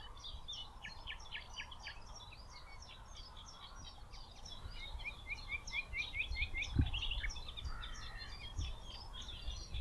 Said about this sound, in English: Just found a nightingale.